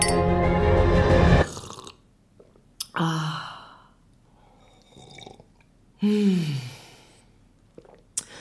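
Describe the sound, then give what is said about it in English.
A loud slurping sip of hot cocoa, then satisfied sighs and hums, with a couple of brief, sharp clinks of mugs raised in a toast in between. No one speaks. “This cocoa is really soothing.”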